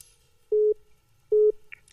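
Two identical steady tones of a telephone busy signal on a failed call, each lasting about a fifth of a second with an even pause between, loud and clear against a quiet background, followed by a faint click.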